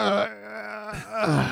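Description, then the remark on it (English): A drawn-out, voiced groan of someone having a big stretch, fairly loud, rising and falling in pitch over about a second and a half with no other speech. “Just getting that good stretch.”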